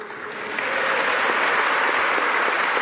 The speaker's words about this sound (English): Even that applause wasn't convincing.